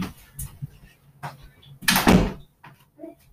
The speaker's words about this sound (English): And yeah, I'm gonna close the door as well.